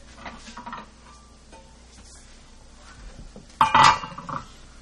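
Plates and dishes clink as they're set down while getting ready to turn a Tadig out onto a plate, a few light taps at first, then a louder clattering knock of crockery near the end. No one speaks.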